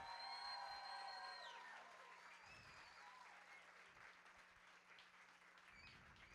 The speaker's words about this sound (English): We want to welcome all of our family and friends to the graduation celebration of the class of 2016. Let's give them all another round of applause.